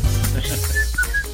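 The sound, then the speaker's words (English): A person whistles a few short, thin notes in a halting little tune, fairly faint over a low background rumble, with no talking. “I can't whistle.”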